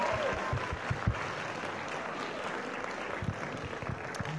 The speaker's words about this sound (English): Could everybody give a round of applause to Iron Man? Thank you so much.